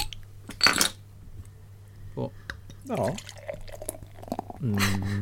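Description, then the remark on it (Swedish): A Monk's Stout Dupont beer is opened with a short burst of hiss, then poured into a glass in gurgling, splashing spurts with light glassy clinks, forming a thick foam; a voice briefly speaks once. “Någon häller upp en öl.”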